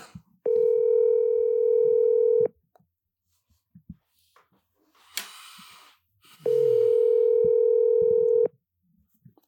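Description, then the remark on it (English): A telephone ringback tone sounds twice, each steady electronic burst lasting about two seconds with a long pause between, loud and clear over a quiet line with a brief click in the gap. “And let me answer the phone for you.”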